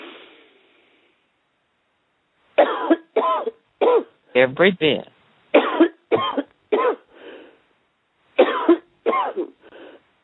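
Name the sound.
coughing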